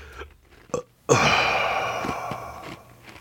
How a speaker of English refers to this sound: All that for a tiny belch.